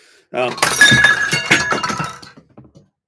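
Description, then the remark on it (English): A glass Oreo shatters with a sharp crash, followed by a rush of tinkling shards and scattered clinks that gradually die away over a couple of seconds. “I broke the glass Oreo.”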